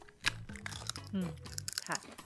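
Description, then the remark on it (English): Crisp crunching of spicy chips that look like Doritos being chewed, several sharp irregular bites in quick succession, with people's voices murmuring faintly in the background. “Okay, I am going to try these, but only because the packaging is cute. They actually really good.”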